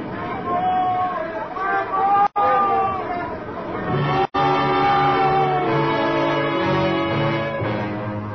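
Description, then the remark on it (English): Several men shout and call over one another on a ship's deck at night, a loud, continuous jumble of raised voices with two brief breaks in the din. “Then there was one night when shouting on deck woke me up.”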